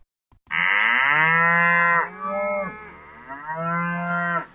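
cows mooing

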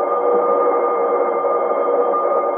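alarm ringing

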